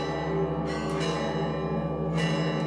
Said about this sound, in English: The sepulcher is controlled by 5 different Christian sects, with varying rules for who oversees specific parts of the church. The bells signify it's time for one group to take its watch, and here they come, all dressed in black, long gray beards.